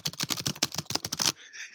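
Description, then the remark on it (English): Rapid, continuous typing on a computer keyboard, a dense burst of sharp clicks at a fast rhythm, fairly loud, stopping abruptly after just over a second with faint hiss remaining. “Now that's fast typing.”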